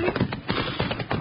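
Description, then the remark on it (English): Horses' hooves clip-clop in a quick, steady rhythm as the horses come, a run of hollow knocks, moderately loud, with no voices over them. “I sure hope he was in too much of a hurry to steal our horses. Here, Buckshot. Hey, Bill, here they come.”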